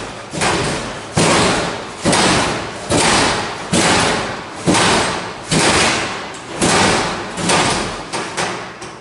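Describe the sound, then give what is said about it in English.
A door in a school hallway bangs with heavy, booming thuds at 3 o'clock in the morning, about ten loud impacts in a steady rhythm roughly once a second, each ringing out briefly before the next. No one speaks. “Door open.”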